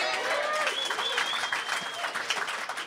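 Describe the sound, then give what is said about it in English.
Steady applause from a crowd fills the whole stretch, a dense patter of many hands clapping at an even loudness, with faint voices and a brief whistle-like tone mixed in. “yeah, round of applause, yeah.”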